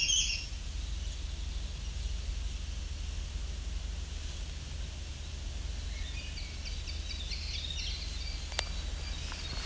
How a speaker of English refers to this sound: I'm hearing a thrush.